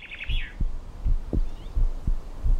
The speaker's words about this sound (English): And there's a close correlation between heart rate and breathing. Their natural rhythms seem to be in a proportion of something like 4 to 1 or 3 to 1, 3 or 4 heartbeats for every respiratory motion.